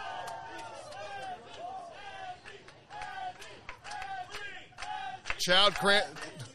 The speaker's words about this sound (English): The crowd chanting for Azzy.